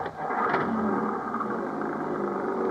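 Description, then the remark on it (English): An old Jeep's engine turns over and revs up, its steady mechanical roar climbing in pitch as it accelerates, loud throughout with no voices. “Now, hold on to your seat and I'll show you how one of these things can really take these roads.”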